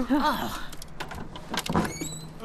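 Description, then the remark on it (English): A heavy door knocker strikes the door of a dirty, dingy house several times in a loose, uneven rhythm, each blow a dull, sharp thud, following a brief voice at the start. “Wow, this door knocker is really heavy.”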